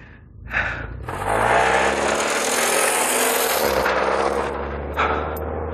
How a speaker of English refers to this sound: Of course, there's also a car coming that way.